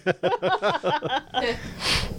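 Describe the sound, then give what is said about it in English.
A voice imitates a man's snore in a Russian accent: a rapid string of about five gravelly, falling voiced pulses followed by a long, hissing, breathy exhale, fairly loud with no other talking. “Russian accent snore.”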